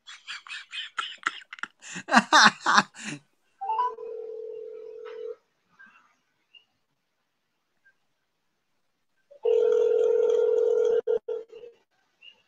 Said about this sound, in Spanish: A ver si coge el teléfono.